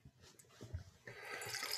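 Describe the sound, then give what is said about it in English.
Wine, a 2018 vintage that was barrel fermented and barrel aged, is poured into a glass, starting with a few low glugs and then settling into a steady, bright splashing stream that grows slightly louder, with no talking. “Shall I pour you some of your own wine?”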